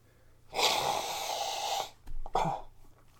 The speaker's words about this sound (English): If anybody hears me sneezing during the day